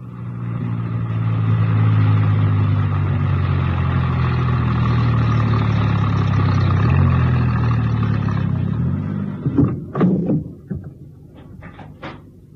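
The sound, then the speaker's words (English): A van engine drones steadily with a low, rumbling hum for about nine seconds as the van is driven into a small printer's yard on the west side of the town, then winds down, followed by a few sharp clunks and knocks like doors or handling as it stops. “My star operator was enjoying himself hugely and whistled happily as he drove the van into a small printer's yard situated on the west side of the town.”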